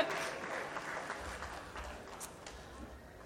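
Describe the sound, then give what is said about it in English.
An audience applauding: a steady, dense patter of many hands clapping at once, fairly soft and even throughout, with no voices standing out. “Keep clapping.”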